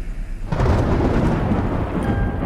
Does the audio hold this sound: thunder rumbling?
yes